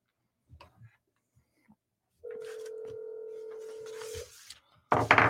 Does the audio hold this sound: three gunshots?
no